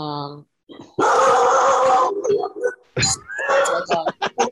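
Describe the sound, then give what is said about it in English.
A dog barks suddenly and loudly, one harsh burst after a brief tonal yelp, followed by startled voices reacting and talking over one another. “The dog, to see all three of us collectively jump up when that dog, especially on my headphones”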